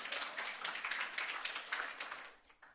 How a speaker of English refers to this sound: Many of you probably know her. Yeah. You can clap for her. It's okay.